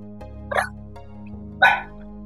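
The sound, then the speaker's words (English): A dog barks at the moon twice, two short sharp barks about a second apart, the second a bit louder, against a steady low hum with no talking. “She's just barking at the moon.”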